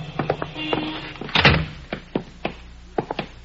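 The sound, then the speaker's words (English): The door of a settlement house shuts with a solid thunk midway through, surrounded by a scattering of sharper clicks and knocks, like a latch and handle rattling. No one speaks. “Here, we go in this door.”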